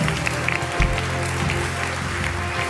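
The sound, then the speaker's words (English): An audience applauds those who have just made a prayer and declaration of faith, with dense, steady clapping from many hands that holds at an even level throughout, a low sustained hum faintly beneath it. “Again, can we applaud those that have made that prayer, that declaration of faith?”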